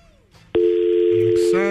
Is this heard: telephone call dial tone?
yes